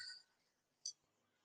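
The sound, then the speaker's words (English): A small bell gives two quick, high, bright dings about a second apart, each fading fast; the sound is faint, with quiet behind it. “Bell.”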